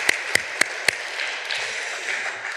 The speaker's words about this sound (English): Give everyone a round of applause, folks. Thank you for doing that.